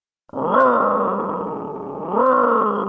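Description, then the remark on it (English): A voice imitates the engine of Buddy, a bulldozer on a ranch, straining to start as Andy tries again and again to start it: one loud, growling roar held for nearly three seconds, sagging in the middle and then surging again near the end, heard alone. “Went Buddy's powerful engine, roar, again and again, but it just would not start.”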